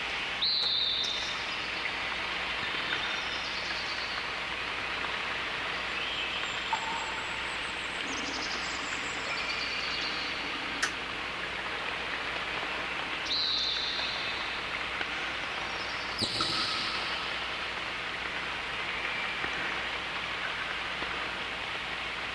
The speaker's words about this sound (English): So here we got a reverb. Let's take kind of a slow LFO into the reverb time.